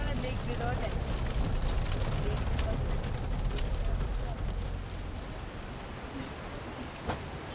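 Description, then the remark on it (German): Steady, dense rain pours down during a drive in a Jeep in Bhutan, a loud continuous hiss mixed with the low rumbling drone of the Jeep's engine, easing slightly in volume near the end. “breche ich in unserem Jeep bei strömendem Regen zu einer einmonatigen Fahrt nach Zentral-, Ost- und Süd-Bhutan auf.”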